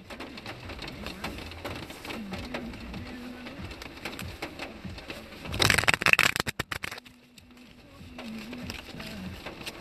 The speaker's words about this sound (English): So anyways, like I said, I'm gonna shuffle this traditional tarot deck and see what we get. Let's do 5 shuffles.